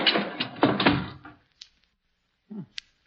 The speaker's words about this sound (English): Hurry, help me close the door before the archway falls on us.